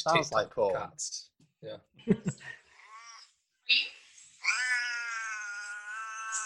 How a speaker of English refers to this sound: It sounds like cats.